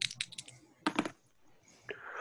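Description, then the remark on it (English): Dice clatter and tumble across a hard surface in two bursts of sharp, bright clicks, a quick rattling run followed by a second tumble, then a faint hissy tail, rolled for an intelligence roll in a game, coming up 23. “Yeah, well, why don't you do an intelligence roll, but you're going to need an extreme, which is doubles.”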